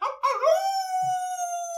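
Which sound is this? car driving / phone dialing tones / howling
howling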